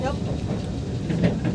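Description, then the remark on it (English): Steady low rumble of a Yishun-bound metro train slowing down as it approaches Ang Mo Kio station, fairly loud, with a brief voice at the start over the continuous rolling noise of the carriage. “I meant this train speed is slowing down for some reason, because approaching to Ang Mo Kio.”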